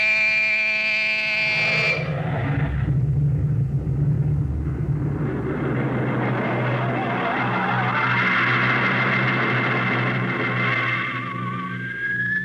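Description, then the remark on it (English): A harsh electronic buzzing tone sounds briefly, then a spaceship's rocket engines ignite on the navigator's signal into a loud, sustained roar with a rising whine building through the blast-off, continuing steadily to the end. “Ready your rockets. Prepare to blast off on navigator's signal.”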